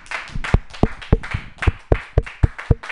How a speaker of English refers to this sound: Clap it up for yourselves. Thank you guys. To the Mutiny Happy Hour Open Mic.